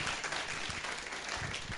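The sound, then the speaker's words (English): An audience applauds steadily, dense overlapping hand claps forming a continuous, fairly loud wash of sound with no voices standing out. “Let's give another big clap of wonder.”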